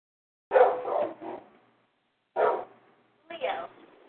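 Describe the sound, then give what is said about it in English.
A dog barks in three short bursts: a quick double bark, a pause of about a second, then two more separate barks, clear with no one talking over them. “You have a dog?”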